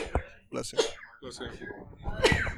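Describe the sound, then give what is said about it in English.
A person sneezes once, a sharp burst, with low murmured talk and breathy vocal sounds around it. “Bless you.”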